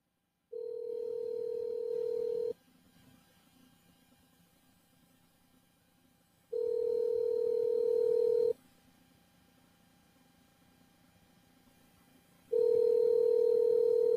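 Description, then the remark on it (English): A telephone ringback tone from an outgoing call to a caller picked at random from a list, sounding three times, each steady two-second burst followed by about four seconds of quiet, heard clearly on its own with faint background hiss. “Look, like that first caller didn't pick up the phone, so we are calling them at random.”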